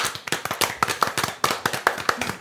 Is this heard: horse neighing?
no